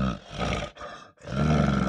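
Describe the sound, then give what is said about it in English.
A person imitates an angry bear's growl with loud, rough, throaty roaring in three sustained bursts separated by brief breaths. The lowest and heaviest burst comes last. “Grr, it growls.”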